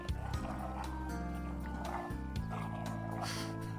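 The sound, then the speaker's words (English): A dog barks several times in short, sharp bursts, fairly loud, layered over a steady, droning musical backing that fills the whole stretch. “There's a dog here.”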